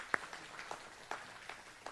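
Light, scattered audience applause: a handful of separate claps spread unevenly across two seconds, one sharper clap at the start, all fairly quiet with no voices.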